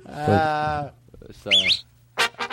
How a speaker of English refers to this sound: that sounds like your whistle in the beginning. I wish I could whistle like that. Play that again.